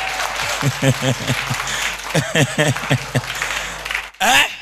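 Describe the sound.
A church audience claps steadily for several seconds for a pastor, a dense wash of applause with voices calling out over it, briefly dropping away at the end before a loud voice rises.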